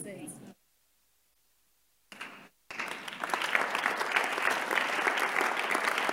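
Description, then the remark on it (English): An audience claps: a short burst breaks the quiet, then dense, steady applause swells and keeps going to the end, many hands blending into a loud, continuous patter. “Because you didn't clap well, let me go deeper.”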